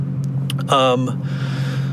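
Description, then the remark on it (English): A supercharged car engine idles with a steady low drone, then gives one short, sharp rev with a rising whine at a driver blocking traffic before settling back to idle. “I'm going to have to shout at them with my supercharger.”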